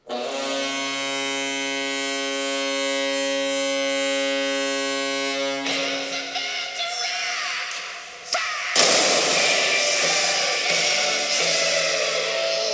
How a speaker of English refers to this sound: It's time to fire the cannon, and it's time to put on your jackets.